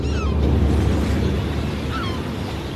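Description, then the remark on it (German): A fishing cutter chugs out of the harbour of Greetsiel at 6:30 in the morning in icy cold, heading through the canal to the sea for shrimp fishing, its engine a steady low rumble under wind and rushing water, with two brief gull cries cutting through. “Die Männer schippern mit ihren Kuddern auch bei Eiseskälte hinaus aufs Meer.”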